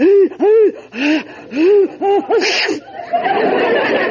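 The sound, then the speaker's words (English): A drawn-out sneeze: several rising, gasping breaths build up in a rhythmic series, then release in one sharp, hissy burst, followed by a soft, noisy trailing exhale. “Bless you.”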